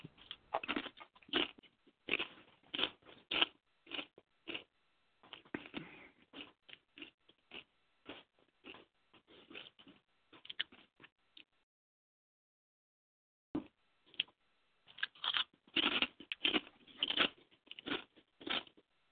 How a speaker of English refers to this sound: Sound like you're crunching on something. I'm just finishing my supper.